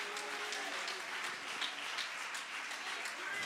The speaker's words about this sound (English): Clap your hands if you believe it. Somebody give the Lord a mighty hand clap of praise.